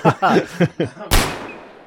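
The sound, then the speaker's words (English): A voice makes four quick, punchy 'blam' bursts imitating shots fired indiscriminately into a crowd, then one loud, sharp gunshot cracks out and its echo rings away slowly. “And with some blam-blams, Greg starts firing indiscriminately into the crowd.”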